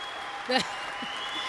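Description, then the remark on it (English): A voice briefly imitates screaming, cheering fans with one quick, high whooping cry over a steady hiss, followed by a couple of faint vocal murmurs. “I'll just be all of the screaming fans and nobody else.”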